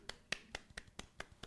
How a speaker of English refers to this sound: A little round of applause there.